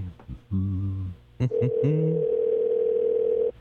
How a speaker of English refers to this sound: Still ringing and ringing. This is what a phone sounds like when it's ringing.